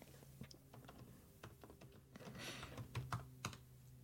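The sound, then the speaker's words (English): Rapid, irregular clicking of keys on a computer keyboard, clear, with a low steady hum in the background and no voices. “I wanted people to hear me typing.”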